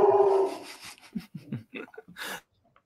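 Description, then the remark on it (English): A dog lets out one loud, drawn-out bark, followed by a quick string of shorter, softer barks and huffs that trail off into silence. “While I need to possibly go sort my dog out.”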